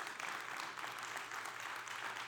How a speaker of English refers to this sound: Y'all sounded absolutely beautiful. Can you give yourselves a round of applause before we jump in?